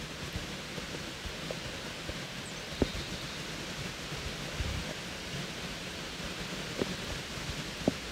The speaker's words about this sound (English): It was raining a tiny bit